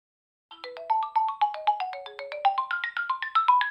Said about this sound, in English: Come on, the GameCube intro sound is the ringtone.